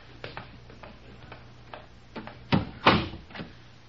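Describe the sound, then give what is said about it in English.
A run of small clicks and ticks, then a door is pushed shut behind people going down steps into a cellar, with two muffled thuds, moderately loud, with no voices. “Now to open this door without making too much noise.”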